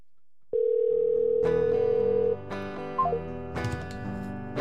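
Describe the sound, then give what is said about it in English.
A single steady electronic ringback tone drones for about two seconds on an outgoing phone call that goes unanswered, then cuts off as tonal musical notes and clatter take over. “Guys, it's ringing.”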